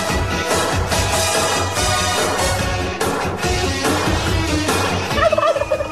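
A turkey gobbles loudly in rapid, rattling warbles that run steadily for several seconds, ending with a few higher, sharper bursts; no one speaks.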